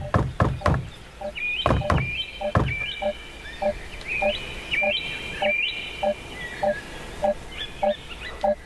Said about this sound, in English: So do you hear that beeping noise on the right-hand side?